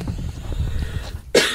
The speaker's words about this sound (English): Excuse me, I had to cough.